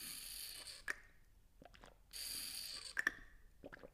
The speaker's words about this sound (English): I just need to take a quick sip of water.